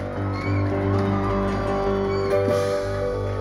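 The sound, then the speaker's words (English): An audience at an afternoon worship service claps and shouts together, a dense, continuous roar of hands and voices over steady held musical chords, loud and unbroken for a few seconds. “If you believe, clap your hands and add another shout.”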